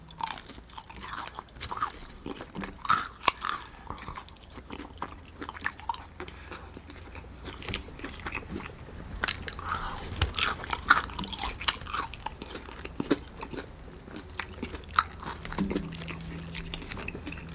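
Loud, wet crunching and chewing as someone bites into crispy Popeyes Louisiana Kitchen fried chicken, with irregular sharp crackles and squishy mouth sounds throughout, no talking.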